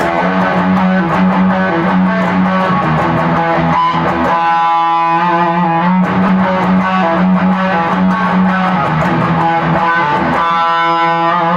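A loud, driving distorted electric guitar riff plays continuously with a chugging rhythm, pausing twice on sustained, ringing chords before picking back up. No one speaks.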